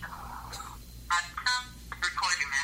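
A call to a man's cell phone rings out over the line with no pickup, a few short electronic tonal bursts repeating at moderate volume against a low background hum.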